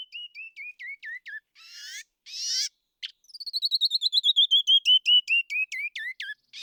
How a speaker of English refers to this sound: That's a sound you might hear in the Grand Canyon or Canyonlands or Big Bend National Park. Do you recognize it? It's a canyon wren.